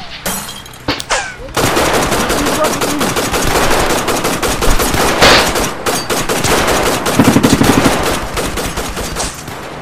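Loud, sustained machine gun fire rattles off in a rapid, continuous stream of shots after a few scattered opening bangs, with no talking, just the dense clatter filling the whole stretch.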